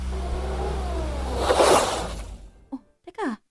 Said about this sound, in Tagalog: Ito yung kotse.